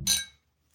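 drinking glasses clinking

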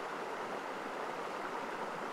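flowing river water

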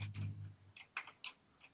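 computer keyboard typing

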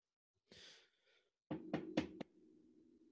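knocking on a door

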